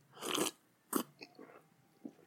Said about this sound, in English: I'm going to have a sip, and then we will begin.